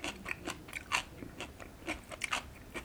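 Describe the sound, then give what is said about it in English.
Crisp crunching as someone bites into and chews a crunchy young radish kimchi, with a series of sharp, irregular crunches repeating over a few seconds and no talking. “And now I'm going to try my kimchi, which is also made of radish, young radish. It's got a nice crunch to it.”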